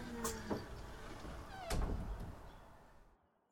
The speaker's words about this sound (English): Somewhere nearby, you hear a door open and close.